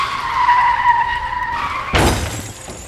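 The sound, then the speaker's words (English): A car's tires squeal in a sustained, high-pitched skid for about two seconds, then a loud crash with scattering, shattering debris cuts it off. No one speaks. “Some of these drivers, they like to run over pedestrians and run into each other, and then their cars go.”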